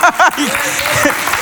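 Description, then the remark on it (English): An audience claps for the Dallas Cowboys in a steady, dense wash of applause that holds for the whole moment, with a voice speaking briefly over it at the start. “You don't clap for family and you don't clap for friends, but you clap for the Dallas Cowboys.”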